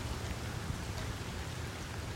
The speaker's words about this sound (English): The rain picks up, drowning out my voice.